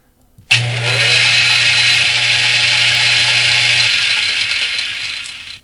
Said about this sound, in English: I'm going to test this theory again with a frog and a blender. Now, I turn the switch on, and what happens? I add energy, right?